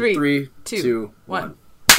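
People talk for a moment, then a single loud, sharp hand clap snaps out at the very end, a crisp burst that cuts off almost instantly.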